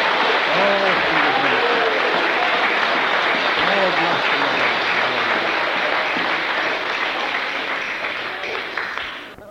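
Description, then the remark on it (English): A crowd breaks into sustained, dense applause lasting several seconds, with voices calling out over the clapping before it begins to fade at the end. “Let's give him a clap for the glory of God.”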